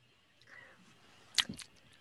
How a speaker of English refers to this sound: sorry, I'm chewing right now.